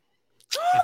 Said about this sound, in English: Gasp.